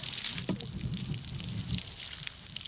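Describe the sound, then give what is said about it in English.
Water splashes and trickles steadily onto garden plants and soil as they are watered by hand from large plastic cans, a soft continuous wash with a few slightly louder splatters, with no voices. “But some plants are watered by hand.”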